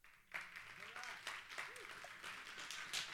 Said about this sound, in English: For a second, I wondered, why are they clapping? That wasn't that. But you're obedient.